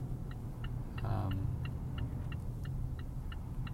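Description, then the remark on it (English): Steady low road rumble from inside a car moving on a freeway, with a quick, regular ticking like a turn signal clicking throughout and a brief whoosh of passing traffic; no one speaks. “And it's not possible to see at this point, but the cars are going very slow on the other side of the road, heading this way.”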